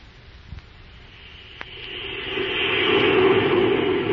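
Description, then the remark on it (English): A steady rumbling roar of a train running along the tracks toward the yard limits at Unity Station, building gradually in loudness with a couple of brief clanks, no voices present. “We'll be hitting the yard limits at Unity Station in a minute.”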